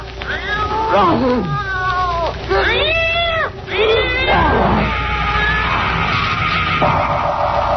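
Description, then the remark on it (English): A cat yowls loudly, letting out several long, wavering cries that rise and fall in pitch, followed by a sustained drawn-out wail over a low, steady background rumble. “Here, kitty, kitty, kitty. Don't go away, kitty.”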